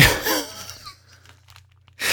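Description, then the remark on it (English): Bubble wrap crinkles and rustles in a short burst, fades to a quiet low hum, then crackles again loudly at the end as it is handled. “I think the bubble wrap might be a bit...”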